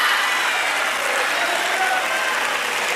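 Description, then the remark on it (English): Steady applause from an audience at Transformation Church, a dense, even wash of many hands clapping that holds at a constant loudness for the full few seconds with no voices over it. “Why are they applauding for that?”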